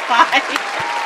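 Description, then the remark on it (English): An audience claps in a steady, dense wash of applause, with a few brief louder swells early on and faint voices or cheers mixed into the noise. “Let me have a round of applause for”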